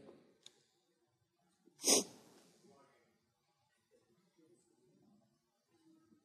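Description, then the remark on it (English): One sharp, explosive cough bursts out, loud and brief, followed by quiet breathing and faint low murmuring. “Maybe the coughing is for my humility this morning.”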